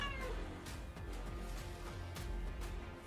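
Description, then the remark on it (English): A cat lets out a short meow near the start, fairly quiet, over a steady low background hum with no talking. “I think I can hear him.”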